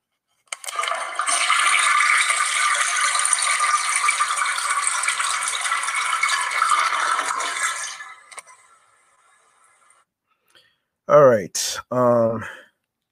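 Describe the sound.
A toilet flushes loudly, a steady rushing roar of water lasting about seven seconds before cutting off, followed after a pause by a couple of brief voice sounds.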